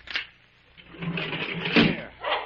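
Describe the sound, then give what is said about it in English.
A heavy sliding metal door of a sealed railroad car, its seal broken, grinds and scrapes open, with a sharp clank near the start and a louder rumbling surge toward the end, with no talking. “Open up that car.”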